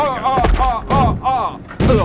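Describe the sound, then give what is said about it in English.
A person falling over inside a lift bumps against the lift wall in a series of heavy, booming thuds, about four loud knocks spaced irregularly, with wavering voice-like tones sounding between and over them. “Because I was knocking against the wall.”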